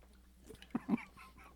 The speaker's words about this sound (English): Maybe I need to take a sip of water.